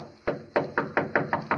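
Seven firm knocks on a door in a quick, steady series, each a solid dull thud with a short ring-out, the first after a brief pause and the rest coming slightly faster.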